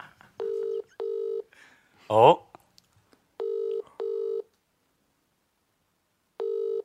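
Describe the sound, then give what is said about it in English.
Paired electronic telephone tones from a phone near the microphone sound loud, repeating in short double bursts with pauses between. A brief vocal exclamation cuts in between the first and second pairs. “That phone near the microphone.”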